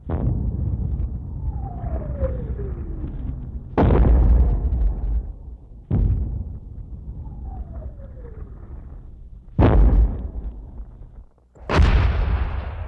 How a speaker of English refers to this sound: Over and over the rounds came, deafening explosion after explosion, terrorizing the Belgians. Smoke filled the air.